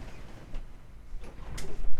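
A cat bangs at a door and it is opened to let the cat in: a few soft knocks and a latch-like click, then a louder scrape and thump as it swings, with low rumbling handling noise and no talking.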